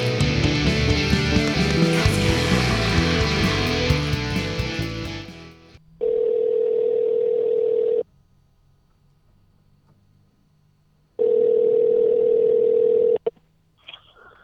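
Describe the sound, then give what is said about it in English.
Music fades out, then a steady telephone tone sounds in two long two-second bursts with a pause between, as a phone call is placed to a guest, with no talking. “We're going to get him on the phone right about now.”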